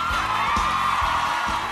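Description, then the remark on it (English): Audience applause and cheering at the live Stratford University Pop Quiz show from Washington, a steady loud wash of clapping with whoops and shouts rising above it, continuous throughout without any speech. “You're just soaking in the applause there, weren't you?”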